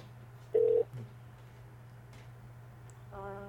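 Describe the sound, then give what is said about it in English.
Telephone call to a listener sounds over a steady low electrical hum: a short, loud electronic beep, a quiet pause, then a buzzy ringing tone starting near the end. No one speaks. “They go ring, ring, ring.”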